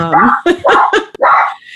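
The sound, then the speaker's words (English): A dog gives a quick run of about five loud, high-pitched barks and yips, some drawn out into whiny tones, with only brief gaps between them. “So even the fucking dog doesn't like all the fucking mess that we have going on in our lives.”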